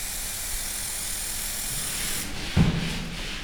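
A steady hiss of spray adhesive being sprayed onto a wooden panel for about two seconds, then it cuts off and a soft thump and faint rubbing follow as a sheet of handmade paper is laid on and carefully smoothed of air bubbles, while gluing picture labels. No one speaks.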